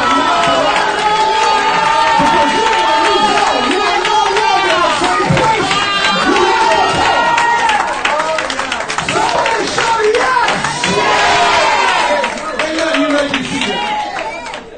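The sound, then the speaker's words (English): An audience loudly cheering and clapping in praise to God: many voices shout and whoop over dense, rapid applause that stays strong throughout, easing slightly at the very end. “You should open your mouth and give God some praise.”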